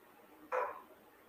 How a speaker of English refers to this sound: And my dogs are barking and I can't do anything about it.